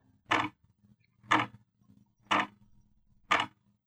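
clock ticking

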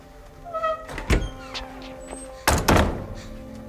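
door being closed

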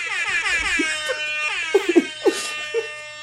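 air horn sound effect

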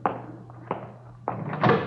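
door being opened

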